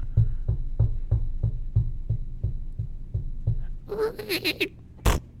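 A door sound: a run of steady, rapid low thumps gives way to a wavering, creaky groan, then a single sharp bang near the end. No one speaks.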